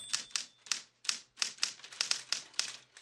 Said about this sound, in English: And, you know, he types them all out on a good old Royal typewriter.